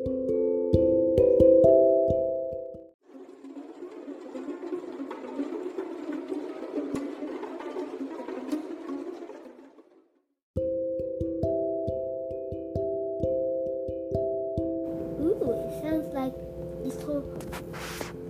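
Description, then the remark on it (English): Dense, steady patter of raindrops hitting the metal surface of a time machine for several seconds, framed before and after by sustained, humming electronic tones. “Pots of rain dropping on the time machine.”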